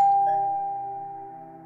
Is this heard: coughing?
no